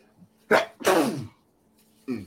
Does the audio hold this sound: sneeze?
yes